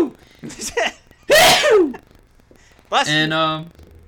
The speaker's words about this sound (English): Oh, I'm going to sneeze.